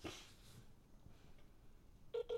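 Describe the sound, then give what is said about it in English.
A phone call being dialed to try to call someone back: after a couple of seconds of quiet, faint rustling, a steady electronic tone sounds near the end, briefly broken and clear. “so we're going to try to see if we can call him back again.”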